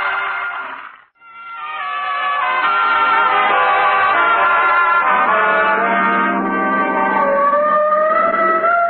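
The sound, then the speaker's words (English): A loud siren mounted on a car wails steadily with harmonic tones that slowly rise and fall, briefly cutting out near the start before sounding continuously again, prominent with no talking. “Oh, the siren. No, that's on our car.”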